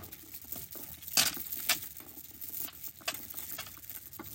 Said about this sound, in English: But here I am in my sister's bedroom closet, and there is a set of Mardi Gras beads on the door. So I'm just going to jingle and jingle those around for this episode's ASMR Mike segment.